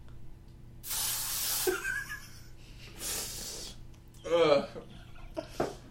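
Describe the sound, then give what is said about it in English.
Two loud, breathy fizzing hiss bursts, like a pressurized spray, apparently made by a voice imitating the sound, followed by short voiced vocal noises. “Bunny blood is pressurized. Fizzy. Carbonated?”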